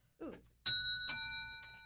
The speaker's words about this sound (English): I gotta buy some bells.